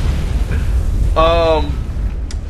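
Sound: air horn sound effect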